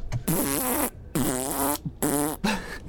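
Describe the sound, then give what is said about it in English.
A man blows loud raspberry sounds with his mouth to imitate farts: three buzzing, sputtering bursts of decreasing length with brief gaps, ending in a short final blurt. “He's farting out of his mouth.”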